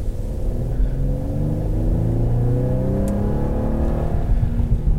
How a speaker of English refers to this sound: Yeah, I mean, you push the pedal down even in comfort mode and it goes. It's not a neck-breaking acceleration situation. It is moving a big car, so be patient, but it's still quick.